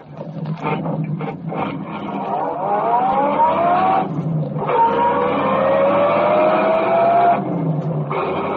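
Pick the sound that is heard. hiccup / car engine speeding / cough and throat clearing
car engine speeding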